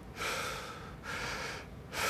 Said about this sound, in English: All right, ladies and gentlemen, super important, the Wim Hof breathing, the breath. Take deep breath.